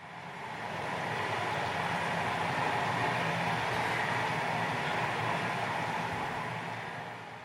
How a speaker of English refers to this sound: We're going to let Mother Nature sing to us through this river. We're going to be quiet, and we're going to listen and let that healing spirit of that river flow through us. And so here is this the sound of that river.